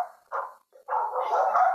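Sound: several dogs barking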